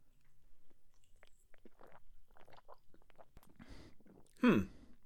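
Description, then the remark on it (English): Quiet mouth sounds: small wet clicks and slurps from sipping a drink from a can, then a louder gulping swallow near the end with a brief voiced breath. “I need another sip.”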